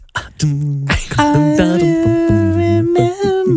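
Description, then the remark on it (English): Voices sing a doo-wop style backing vocal, holding smooth wordless notes that step up and down in pitch over a few seconds, with no other sound. “I did not do that doo-wop sound very well.”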